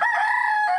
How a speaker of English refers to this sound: They're doing the interview in front of a rooster.